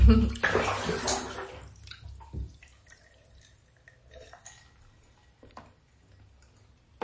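A loud rush of pouring water for about two seconds as someone takes a water break to drink, then a quiet stretch of soft drips, small clinks and faint movement, with no one speaking.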